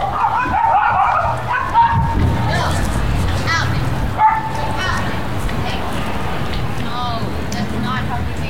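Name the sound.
puppy barking and yipping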